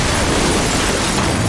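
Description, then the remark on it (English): A loud, dense crash of a tractor smashing through a wall, a continuous roar of breaking, rumbling noise that fills the whole moment at steady intensity, with no voices. “Good heavens, my old friend Farmer Collins has just come crashing through the wall on his tractor.”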